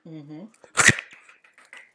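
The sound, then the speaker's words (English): A brief voiced hum slides into a short, loud sputtering fart burst with a low rumble, then trails off into faint scattered crackles. “And as you hear. Fart.”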